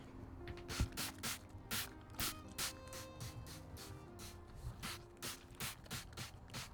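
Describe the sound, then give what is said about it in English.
A floor cleaner trigger spray bottle squirts repeatedly in quick, rhythmic bursts, each short hiss followed by a faint click of the mechanism, with no voices; the floors are being sprayed indoors during morning cleaning chores. “There she goes, my floor spray. I love the sound of that.”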